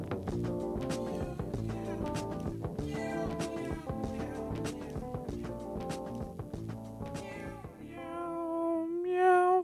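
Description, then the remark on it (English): A loud radio jingle played from a soundboard runs straight through, full and densely layered with instruments, then switches in its last couple of seconds to bright, sliding sustained tones. No one talks over it. “I don't know what was happening 2 weeks ago, but I brought my soundboard with me and I was trying to play all my jingles and my intros from it.”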